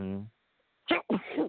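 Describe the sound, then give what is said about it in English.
A brief voiced sound, a short pause, then a loud sneeze: a sharp burst of breathy noise followed by a longer, rougher exhale. “Excuse me. Bless you.”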